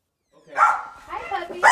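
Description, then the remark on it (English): A dog at a Los Angeles home overlooking a canyon, where a man is dog-sitting, lets out two sharp barks about a second apart, with softer whiny vocal sounds in between. “He's dog-sitting at a sleek Los Angeles home overlooking a canyon.”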